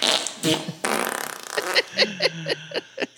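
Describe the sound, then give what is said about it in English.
A loud fart noise played as a sign-off and dedicated to Stan Lee: a drawn-out buzzing blast that breaks into a rhythmic series of short sputtering pops near the end. No one speaks. “It might seem a bit lowbrow given the circumstances, but I have to sign off with a fart noise.”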